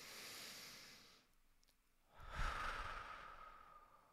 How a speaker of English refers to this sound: And I'm doing that by looking at it and then breathing really deeply.